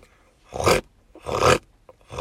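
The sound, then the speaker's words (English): A voice imitates how a big truck with about 1,500 horsepower would roar: three loud, gravelly, breathy bursts, each under a second, with short pauses between, the last cut off at the end. “This is how your truck would sound.”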